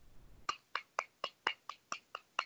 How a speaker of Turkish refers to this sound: Kediyle mi oynuyorsun orada? Yok be, göbeğini alkışladım.